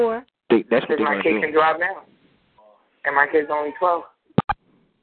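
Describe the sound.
A voice comes through a distorted, bubbling phone line, sounding thin and boxy in two bursts of garbled speech, followed by a couple of sharp clicks near the end.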